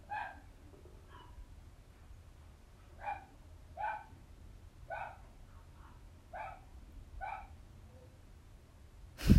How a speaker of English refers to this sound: Oh, they're still going. Thank you, dogs. Thank you for interrupting me. Ah. Dogs want me to shut up.